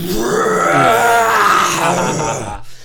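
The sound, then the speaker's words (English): A person imitates a dragon's roar with a loud, rough, growling voice that swells and sustains for over two seconds before cutting off abruptly. “And this little sort of spark forms at the end of your finger, and then you see the kobold start to look around very confusedly as this immense, loud roar, something to the effect of like a...”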